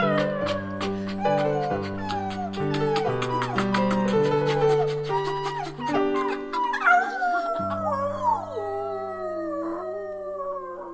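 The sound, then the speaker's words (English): Dogs bark and howl along to a steady musical backing in a recorded folk parody song, the barks landing in rhythm before long, wavering howls take over. Fairly loud, with no talking. “Woof, woof, woof, arf, arf.”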